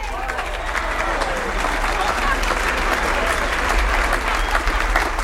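An audience applauds steadily, a dense wash of many hands clapping at even loudness for several seconds, with some crowd noise mixed in beneath the clapping.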